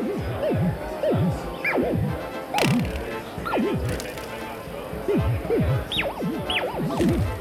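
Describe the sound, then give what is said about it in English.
Funky electronic sounds from a touch-responsive instrument made of an array of door stoppers, each circled by a ring of LEDs, played in freestyle mode by touching and springing them: a busy, continuous stream of springy boings, each tone swooping up and down in pitch, overlapping in quick succession at a steady, fairly loud level. “It consists of an array of door stoppers, each circled by a ring of LEDs, that respond to touch and to being springed, making some pretty funky sounds in freestyle mode.”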